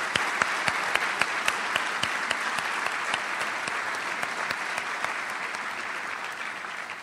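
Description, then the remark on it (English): Steady applause from a crowd for city employees and team members, many hands clapping in a dense, continuous patter at an even level for several seconds, with a few sharper individual claps standing out. “I applaud all of you for being part of the team.”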